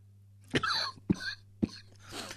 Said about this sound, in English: Yes, that's a cough.